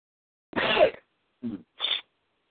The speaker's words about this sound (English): Oh, let me sneeze.